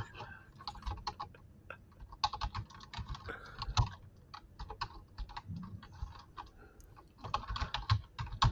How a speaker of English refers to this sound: Just banging your knuckles on your keyboard.